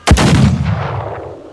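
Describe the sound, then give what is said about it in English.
A single sharp pistol shot from a large, polished handgun held in both hands cracks out loudly, then a booming low rumble rolls on and slowly fades over the next second and a half. The shot is fired at a rope. No voices are heard. “The gun nearly kicks out of my hands. The report is deafening.”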